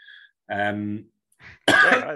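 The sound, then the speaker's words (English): A few harsh bursts of coughing and throat clearing, a short voiced rasp followed by a sharper, louder cough, with brief silences between them. “I do apologize for the coughing.”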